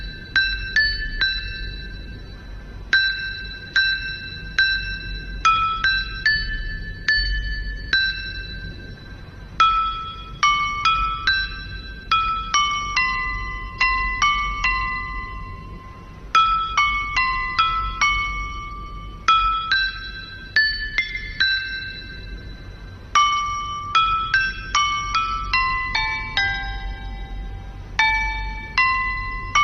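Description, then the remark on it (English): L-shaped stone chimes (qing), hung in a wooden frame and struck with a mallet, ring out a traditional folk melody, each note bright and bell-like with a quick attack and gentle ringing decay, played steadily with no voices. “let's enjoy a traditional folk song, Jasmine Flower, played by the instrument”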